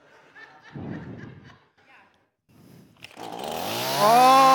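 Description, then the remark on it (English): After a moment of murmuring and a short laugh, a gas chainsaw, just refuelled after failing to start for lack of gas, pulls, catches and roars to life, its engine revving louder and climbing in pitch. “All right, so to get a chainsaw going, right? Why didn't it start at first?”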